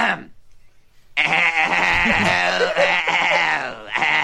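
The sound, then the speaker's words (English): A person loudly imitates a goat's bleat for a barnyard-animal guessing game, holding one long, quavering, nasal cry after a brief quiet lead-in. “I'll make the sound of a barnyard animal, and you all try to guess what it is.”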